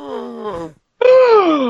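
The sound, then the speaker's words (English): A voice lets out a dramatic, drawn-out gasp in mock shock at a favourite-film reveal, a falling moan-like breath followed after a short pause by a louder, rising and falling cry, theatrical. “Gasp.”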